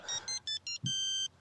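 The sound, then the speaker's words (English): An old Nokia phone ringtone plays a quick electronic melody: four short bright tones followed by a longer held note, clear with no talking. “The one ringtone I had for a long time was the Tony Soprano ringtone.”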